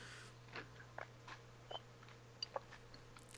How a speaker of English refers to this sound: You're bugging me, busting my chops about grammar, and here you are chewing into your microphone.